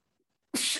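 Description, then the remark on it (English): A single sharp, loud sneeze bursts out suddenly after near silence, with a bright, breathy spray of noise lasting about a third of a second. “Bless you.”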